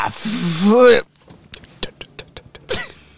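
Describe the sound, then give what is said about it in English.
A burst of hissy noise and a brief voice opens, then about seven quick, sharp footfalls patter in a running rhythm as a woman runs away, before another short vocal sound cuts in. “That's her running away.”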